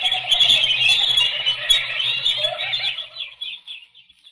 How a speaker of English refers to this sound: The birds.